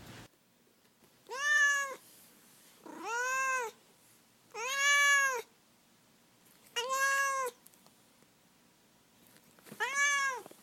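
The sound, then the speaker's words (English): A cat named Duarte meows five times in a slow, evenly spaced series, each call a drawn-out, rising-then-falling yowl against a quiet background. “And now we'll move on to Duarte's Corner, where my cat Duarte has the opportunity to share his thoughts on the book.”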